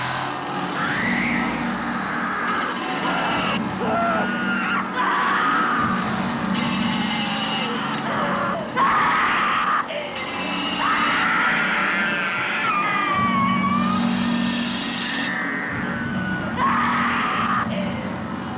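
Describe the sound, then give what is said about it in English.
In a horror film scene, the character Sally screams in terror again and again as Leatherface goes into Franklin, who sits in his wheelchair, over a continuous roar of engine-like noise; her shrill cries rise and break across the whole stretch with no clear speech. “And he is just going into Franklin as Sally screams.”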